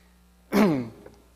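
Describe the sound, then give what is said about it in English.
A single throat clearing because of a dry throat, a short rough burst with a low gravelly rasp that fades over a fraction of a second, heard alone with no talking around it. “I'm clearing my throat both because it's dry and I was going to make a point, but”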